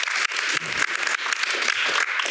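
Audience applause for journalist Moya Lothian-McLean as she is introduced, a dense, steady wash of many hands clapping at once, loud and sustained with slight swells throughout and no voices.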